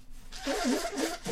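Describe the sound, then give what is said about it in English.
A single real sneeze: a breathy, hissing burst with a voiced, wavering vocal sound running through it, fairly loud and heard on its own without talk. “I got the real thing. Yeah, I'm sick again.”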